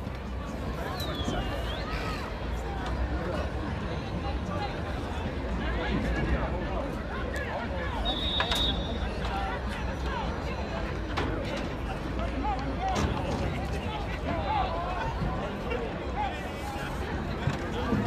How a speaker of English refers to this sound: Golden Lion fans, are you ready for some football? Woo! That crowd sounds weak. That's a weak roar.